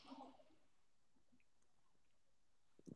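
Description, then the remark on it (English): A short slurping sip of a Rockstar sugar-free energy drink opens, followed by near silence with faint mouth noises and a small swallow-like sound at the end. No one speaks. “but we're getting sugar-free, and you know, if you know me, ladies and gentlemen, and people of all genders in between, non-identifying or otherwise, you know that we've got to go in for a sip on every unofficial sponsor.”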